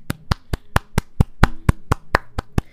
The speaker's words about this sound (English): Can we just take, you know, the moment to give me a clap?